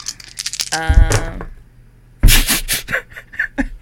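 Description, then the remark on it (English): Four dice being rolled rattle and clatter across a hard surface in quick clicking bursts, with a brief voice sound partway through. “So you're rolling four dice in total.”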